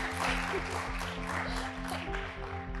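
A church audience claps for the pastor of discipleship, steady in a dense, continuous wash of applause lasting a few seconds, with a low steady hum underneath and no clear voices.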